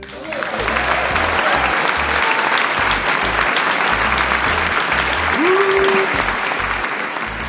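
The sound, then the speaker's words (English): Canned studio-audience applause, put in as fake applause to welcome a guest: a steady, dense wash of many hands clapping at a fairly loud, even level for several seconds, with a brief cheer-like tone rising near the end. “This is where I put the fake applause at.”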